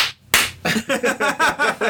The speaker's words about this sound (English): And that's my dick slapping against my thigh.